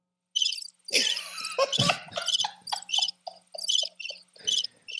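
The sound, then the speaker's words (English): A cricket chirping sound effect played from a soundboard: bright, high-pitched trills pulsing in short rhythmic bursts, with a brief louder jumble of chirps early on before settling into steady repeated chirps. No talking. “Then, you know, you just get, you get the crickets.”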